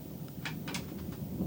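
thunder

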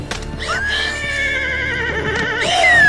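horse neighing

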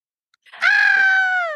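person screaming

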